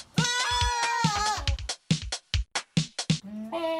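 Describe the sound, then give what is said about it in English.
A short radio segment jingle opens with a loud, quavering goat bleat, followed by a run of choppy, rhythmic vocal bursts and ending on a held, bright note, all prominent. “Of course, with that amazing jingle, we know that it's time for What Gets Your Goat”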